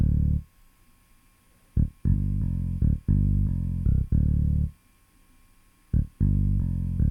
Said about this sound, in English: All right. Let's solo that one. Hear this bass. It's a little deeper.